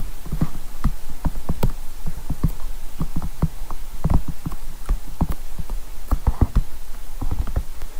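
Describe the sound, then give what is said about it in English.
Rapid clip-clop of galloping horse hooves, a steady stream of sharp hollow knocks in uneven pairs and triplets, fairly loud, with no talking. “you see the capsicum as the sound effect on Monty Python the Holy Grail to gallop horses with”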